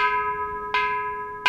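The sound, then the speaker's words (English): A large temple bell called the concho, at the Buddhist Temple of Chicago in Uptown, is struck with a wooden mallet on a Sunday morning to announce the start of service; a deep, sustained hum as two strikes land about 0.7 seconds apart, each a soft thud that renews the shimmering tone. No voices. “Gary Nakai strikes the concho with a wooden mallet.”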